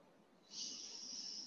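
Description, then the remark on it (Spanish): A single deep, airy inhale during a guided breathing exercise begins about half a second in and holds steady for roughly a second, a soft rushing breath with no talking. “Entonces, lo que vamos a hacer con la primera, que es lo siento, vamos a inhalar.”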